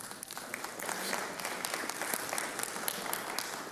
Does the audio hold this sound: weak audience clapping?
yes